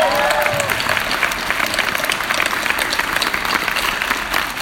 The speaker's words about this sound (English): And they've been, yeah, give them a big round of applause, man.